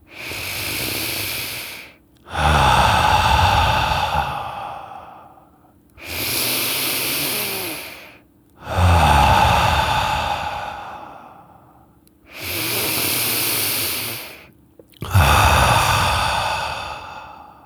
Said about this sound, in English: And so I'd like you to take three deep breaths with me.